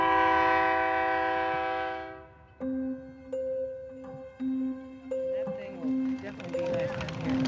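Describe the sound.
An Amtrak train sounds a long, loud horn blast as passengers get off at a small town's station, then a two-note electronic chime repeats several times at a steady pace amid faint background voices and platform bustle.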